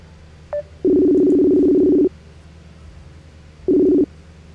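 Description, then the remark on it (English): Phone tones as a call is placed to a guest: a brief high beep, then a loud, steady low ring tone lasting over a second, a pause, and a second shorter ring. No talking. “So, let me give him a buzz.”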